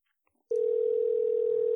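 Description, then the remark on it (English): After a brief quiet moment with a few faint clicks, a steady, unbroken electronic phone tone starts abruptly and holds at an even loudness through the end, like an outgoing call ringing. “Took a minute to ring.”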